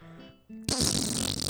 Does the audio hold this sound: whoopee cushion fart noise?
yes